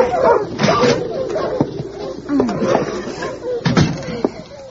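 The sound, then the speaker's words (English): A dog team of sled dogs barks and yelps excitedly, overlapping one another, as a young girl unharnesses them in front of a snug wooden cabin with snowdrifts piled high after several days of snow, while a wooden door bangs shut with a few sharp slams. “It has been snowing for several days, and the drifts are piled high against the snug wooden cabin in front of which a young girl is unharnessing a dog team.”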